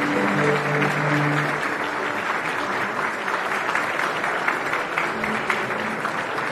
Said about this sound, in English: So, thunderous applause for what? Thunderous applause for absolutely what? For what?